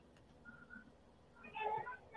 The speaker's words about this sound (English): Sorry, I heard one of the kids crying.